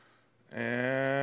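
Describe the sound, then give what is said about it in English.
A single bleat from a dirty sheep in a video being played begins abruptly after a quiet moment, a loud, sustained, slightly wavering cry with no talking. “Oh, look how dirty that sheep is.”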